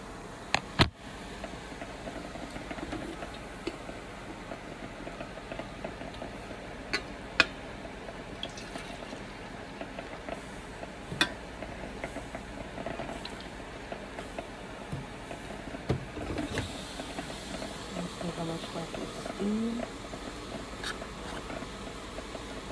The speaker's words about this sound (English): You know, but for those of you that are, like, really curious or really learning something here, stick around in this episode as I pour my coffee.